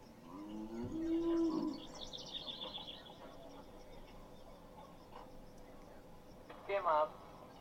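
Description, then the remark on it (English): A cow on a farm moos, then a second, louder moo comes near the end, with faint bird chirps and outdoor ambience between them. “No, that's just my farm in the background. I got some cows out here.”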